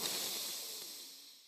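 A long, deep breath drawn in with eyes closed during a breathing exercise, an airy, breathy hiss that holds steady for over a second and slowly softens, with no talking around it.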